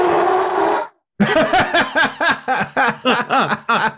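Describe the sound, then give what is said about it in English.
A person blows a harsh, breathy blast for under a second, imitating an elephant's trumpet. After a short pause comes a run of about ten quick, rhythmic chuckling bursts. “That was a very accurate elephant.”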